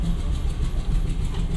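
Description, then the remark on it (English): A steady, low rumble of a train engine idling, continuous throughout with a constant mechanical drone and no voices. “The train's going that way, so come on back and sit in the seats that are facing the right way.”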